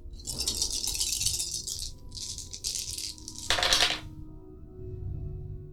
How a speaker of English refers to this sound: And I rolled 2 ones.